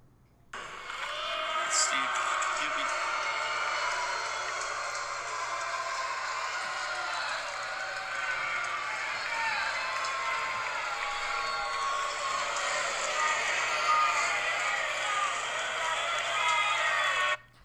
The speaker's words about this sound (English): All right, and that was a spring training crowd, which is maybe 1,000 people. And that's his first at-bat of the spring. And, I mean, you know, it's spring training still, but that was from 1,000 people.